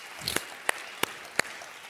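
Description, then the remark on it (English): A church audience clapping in celebration of being forgiven, in a steady rhythm, four sharp, crisp claps at an even tempo standing out over a soft, continuous wash of crowd noise, with no talking. “I'm not saying if you didn't clap, you don't know the Lord.”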